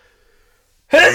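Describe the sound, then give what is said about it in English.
A single sudden sneeze bursts out loud in a stuffy closet studio after a near-silent moment with only a faint hum, a sharp, breathy explosion of noise that ends abruptly. “Bless you. Thank you.”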